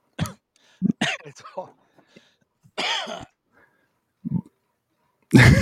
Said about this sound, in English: It's like when you cough.